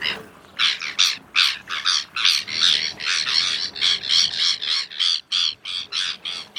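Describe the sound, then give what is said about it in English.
A Sabine's gull gives a rapid, steady series of harsh, grating calls, about twenty short bursts in quick rhythm, fairly loud with no one talking. “The Epic Annual Migration of the Sabine's Gull”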